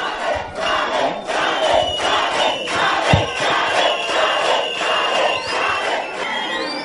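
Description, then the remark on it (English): A loud crowd in a hotel in Harare roars and applauds steadily as Morgan Tsvangirai enters to deliver his State of the Nation address. The applause has rhythmic surges, shouting and a thin whistle-like tone over the noise. No one speaks clearly. “As he entered the hotel, a deafening applause was heard.”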